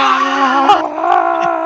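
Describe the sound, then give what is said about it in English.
A loud, sustained human scream held steady for nearly two seconds, strained and harmonic, with a brief wobble midway. It's a voice imitating a scream into a radio that doesn't work properly, with no other sounds. “Beowulf Reborn's put radio doesn't work properly, tries to clear it up, just screams into it instead”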